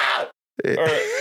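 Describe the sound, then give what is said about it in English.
A person imitates a demonic creature with two loud, rasping yells separated by a brief silence, the second starting with a sharp burst and sustained, gravelly and strained throughout. “I can sound like a demonic creature now”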